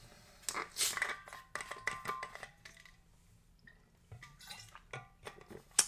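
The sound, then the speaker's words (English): Sipping of a fizzy AHA sparkling water, with crackling carbonation, small slurps and drips scattered irregularly over a few seconds, fairly quiet and with no talking. “Once again, as always, sipping on a crisp, refreshing AHA.”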